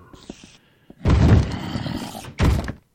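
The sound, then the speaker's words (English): Two heavy, booming thuds as a video game monster tries to bust through a door, the first a long rumbling slam followed after a pause by a shorter second blow, loud with a growling, rattling edge. “Busting through one of the doors. Or trying to.”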